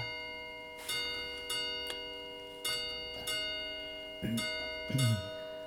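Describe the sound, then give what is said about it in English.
A clock ticks in a steady series of sharp clicks, each leaving a faint metallic ring, with a few brief vocal sounds near the end. “Trying to move the clock. It's an unexpected sound.”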